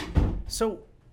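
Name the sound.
door being closed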